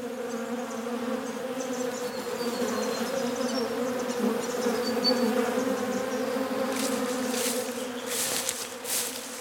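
Steady, sustained droning hum of bees buzzing around flowers, with a layered insect drone holding for the whole stretch and a few faint higher chirps and rustles toward the end.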